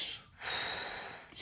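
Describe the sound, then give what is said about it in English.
A voice imitates the heavy, creepy breathing of a woman giving a massage: a long, loud, airy inhale-exhale with a brief pause before and a sharp breath at the end, with no talking. “It was the way she breathed.”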